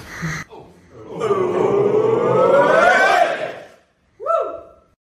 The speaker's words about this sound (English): Yeah, cheers to drink. Yeah, that was actually me cheering behind.